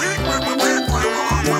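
Three loud, nasal duck quack sound effects in quick succession, promoting the Duck Race on the Chicago River near the Michigan Avenue Bridge benefiting Special Olympics Illinois; each a clear, short raspy honk with a steady rhythm and no talking.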